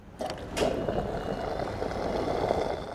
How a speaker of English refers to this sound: as you can hear, I'm topping off the gas tank in my car.